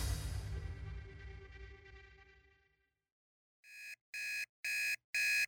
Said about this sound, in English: On July 5th, 2015, an alarm clock woke up David Vincenzetti. It was 3 a.m.